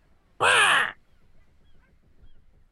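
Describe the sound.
A person voices a single loud, harsh crow-like caw lasting about half a second, raspy, followed by quiet background noise with faint low murmurs.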